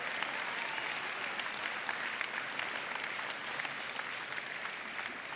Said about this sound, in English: So, kids, hey, let's clap for them. Yep. Thanks, kids.